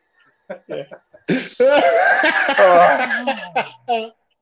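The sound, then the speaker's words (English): A few short, sharp coughs give way to a long, strained fit of laughing and coughing, loud, ending with one more cough burst; no words are spoken. “I started to cough now.”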